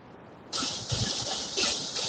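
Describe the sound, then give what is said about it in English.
A boat engine running on the water: a loud, steady rush of hissing spray and wind kicks in after a moment, with low rumbling thumps underneath and no voices. “He is on a boat.”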